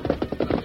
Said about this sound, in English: Four guns blazed at once as the Lone Ranger and Tonto closed in from the other direction.